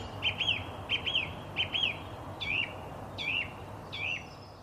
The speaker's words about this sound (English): Bizarrely, I've been listening to a lot of birdsong in forests.